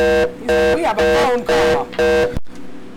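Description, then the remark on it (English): A phone rings with an incoming call: loud, buzzy electronic tones in four quick bursts, then the ringing cuts off abruptly into near silence. “We have a phone call.”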